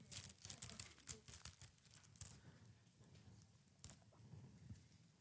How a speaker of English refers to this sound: Guys, to finish today's sermon, please turn to the left to Acts chapter 6. Don't you like the sound of that paper?